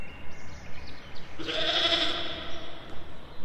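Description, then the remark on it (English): A single goat bleat rings out mid-clip, a loud, nasal, wavering cry lasting under a second, set against a steady low background hiss with no talking. “Oh my god, what is that? Oh! Goat man?”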